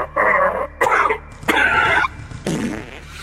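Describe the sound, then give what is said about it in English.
Four loud, buzzy fart sounds in quick succession, each a sputtering burst under a second long, the last one lower and rumbling, with no talking around them. “I don't know what is funnier, the fart or you going, wow.”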